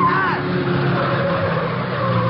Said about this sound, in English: Just as they start across the street, a low black sedan swings around the corner and heads for them fast.